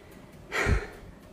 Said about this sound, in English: And I'm on a stationary bike. No shit. That's why I'm panting.